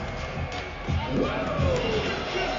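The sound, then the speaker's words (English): A capacity crowd in an arena in Boston, awaiting the Women's War Games match as the cage is lowered, fills the air with a steady, dense roar of chatter and cheering that swells slightly partway through, with no single voice standing out. “We got a capacity crowd.”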